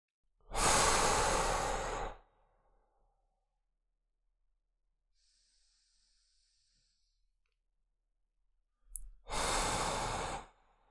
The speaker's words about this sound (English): And let's see if we can bring this back to the body a little bit. Potentially even with another short gap of breathing here, and then you can go into read number two.